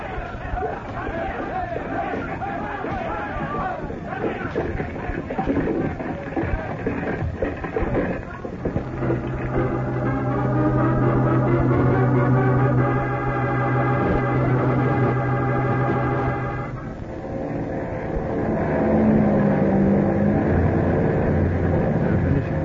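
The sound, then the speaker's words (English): A propeller plane engine drones in flight as the plane comes down to land on a landing strip, a steady low hum with layered harmonic tones that holds for several seconds, while murmuring voices and crowd chatter run beneath and around it. “Hope this plane isn't too big for the landing strip.”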